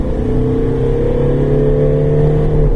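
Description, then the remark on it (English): A car engine, with the car in its middle driving mode rather than sport mode, accelerates with a steady, rising hum, its low harmonic tones climbing gradually in pitch over a few seconds at a consistently loud level, with no talking. “If I put it in sport mode, it will become a lot more urgent.”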